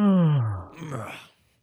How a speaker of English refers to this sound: Natural yawn.